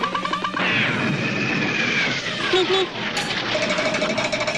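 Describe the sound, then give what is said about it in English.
A cartoon-style falling whistle, the Wile E. Coyote sound, glides steadily downward in pitch over a couple of seconds, buried in a loud, dense clatter of crashing and banging noise that continues to the end. “So yeah, the Wile E. Coyote sound.”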